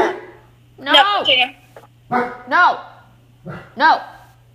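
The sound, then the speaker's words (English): A dog barks in three loud, yelpy bursts, the first a quick double bark, each separated by a short pause, over a low steady hum. “No! Dog.”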